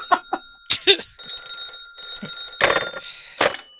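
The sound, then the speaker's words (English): A telephone rings with a shrill, metallic bell tone, several short bursts followed by longer sustained rings, loud and high-pitched with no voices. “Phone rings again.”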